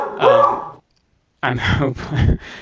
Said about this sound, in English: That is my beagle barking in the background there.